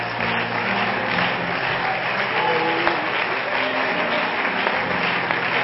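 An audience claps their hands in a steady, dense wash of applause that holds loud and even throughout, with faint crowd murmur and a low hum underneath.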